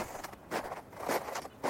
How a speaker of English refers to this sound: The sound of crunching through snow. And where I stand right now is usually 3 foot swell on a windy day.